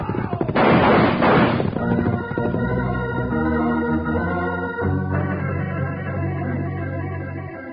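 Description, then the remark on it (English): A loud, rapid burst of gunfire in a shootout cracks out for about a second, the shots packed tightly together, then gives way to steady, sustained tones with no talking. “Well, unlimber your guns. Let's see if we can discourage some of these polecats.”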